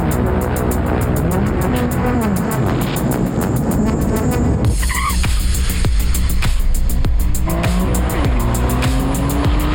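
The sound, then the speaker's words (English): A Tesla Cybertruck electric pickup truck drives hard, its tires squealing in long, wavering, rising and falling screeches over a steady road roar, loud and continuous throughout with no voices. “I want a Cybertruck.”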